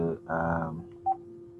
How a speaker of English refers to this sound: I had to mute the ringer on my phone.